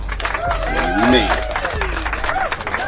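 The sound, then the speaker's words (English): A burst of crowd applause with scattered clapping and cheering voices, steady and fairly loud throughout the three seconds, with no clear speech over it. “Let's get a round of applause for episode 20.”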